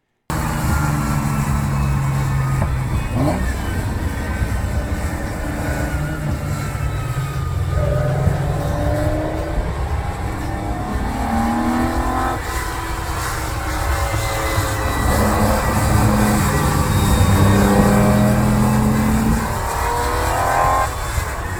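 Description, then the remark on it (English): A Ferrari GTO sports car engine roars, accelerating hard through repeated gear changes, its pitch climbing and dropping in waves over a steady loud rumble, with no one talking. “And I was there to ride shotgun in the GTO as much as possible.”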